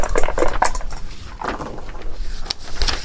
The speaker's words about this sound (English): Well, it's still a 10. Oh, dang. Okay. I even rolled the dice that boned me earlier.